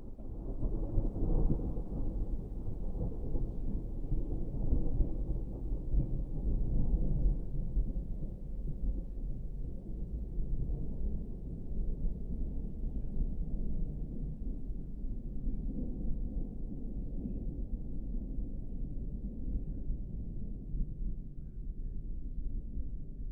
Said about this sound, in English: The boat's decks were caked with life, but there was no sound except the storm.